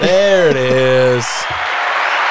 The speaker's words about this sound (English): So, I want my applause.